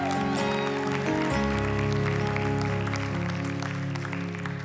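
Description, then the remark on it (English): An audience claps steadily and continuously to honor the absent Prophet Gilbert, over sustained organ-like keyboard chords that hold and shift beneath the dense, even patter of hands. “I think we can give him a better clap than that.”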